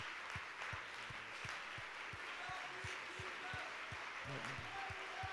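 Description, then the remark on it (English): An audience at a Monday night church service gives a hand clap of praise to the Lord, a steady, dense burst of applause, with a regular low thumping beat running underneath the whole time and no clear speech. “Let's give the Lord one more good hand clap of praise.”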